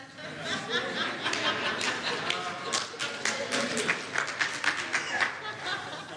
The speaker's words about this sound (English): How come only the ladies are clapping?